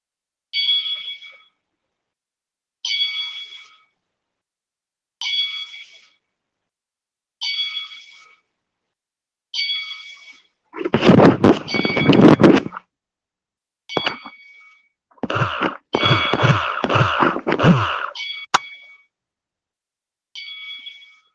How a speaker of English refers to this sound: and we're going to do a 10-bell salute for Mr. Jerry Jarrett. Please join me in a moment of silence as we toll the bell 10 times.